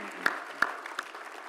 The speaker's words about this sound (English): I think they deserve a round of applause as well for their leadership. Thank you.